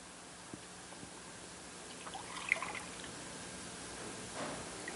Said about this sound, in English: Here's what I want you to do. I want you to pour the water from this pitcher into that cup.